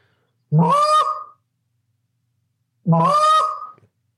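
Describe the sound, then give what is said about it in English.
Two drawn-out, low moaning calls blown on a goose call, each lasting about a second with a rising then wavering tone, separated by a pause of silence. The calls are loud, with no talking. “Now hit a moan”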